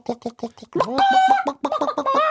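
Chickens cluck in quick, choppy bursts, then one breaks into a louder, drawn-out squawking call before the rapid clucking resumes.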